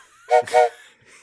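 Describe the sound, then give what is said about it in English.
A steam train whistle sounds two short, breathy blasts in quick succession, a mid-pitched chord wrapped in hissing steam, followed by a faint trailing hiss. “No, it doesn't, because we haven't even arrived at America's favorite train station yet.”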